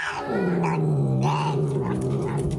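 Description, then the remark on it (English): A kitten lets out a sustained, low, rumbling growl that rises and wavers in pitch for a couple of seconds, fairly loud, with no talking over it. “Sounds like a mountain lion.”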